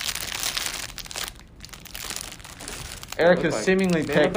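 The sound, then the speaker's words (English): Someone reaches into a crinkly mystery bag of snack goodies to pick something at random, making bursts of sharp plastic rustling and crunching with a short pause, before a person starts talking over the last of it. “reach into the mystery bag of goodies and just pick something random.”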